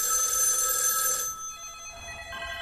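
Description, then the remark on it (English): Telephones ring in a scene from the 1992 film The Lawnmower Man, as every telephone across the globe rings: bright, high-pitched electronic tones, loud and dense for about a second before dropping to a softer, thinner ringing that continues to the end. No one speaks. “And as you recall, Job's thing then said he would announce his birth into the world by making every telephone ring all across the globe.”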